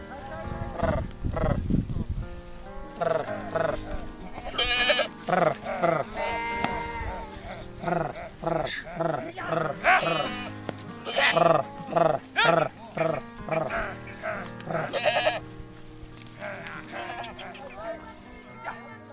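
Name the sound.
sheep and goats bleating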